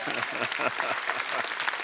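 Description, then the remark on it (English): A crowd applauds steadily, a dense wash of many hands clapping at once with no pauses, holding an even, fairly loud level throughout the short stretch. “You better clap for that one.”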